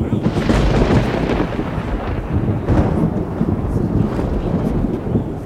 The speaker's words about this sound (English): and from the pier proceeded lightnings and thunderings and voices.